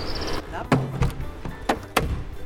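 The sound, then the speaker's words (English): A front door is opened as people head out for a run: a brief high electronic tone, then a series of sharp clicks and clunks from the lock and handle, spaced unevenly over a couple of seconds. “Just opening the door.”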